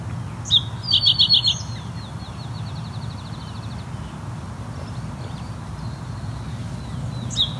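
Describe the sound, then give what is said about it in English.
A house wren's rapid ticking calls at a tall tree at the edge of a field: a quick burst of sharp notes early on, a thin trilling series trailing after, and another call near the end, over a low outdoor rumble. “Looks to be a house wren.”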